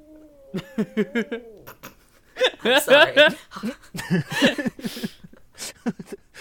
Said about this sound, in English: the comedic timing on that cat, holy shit.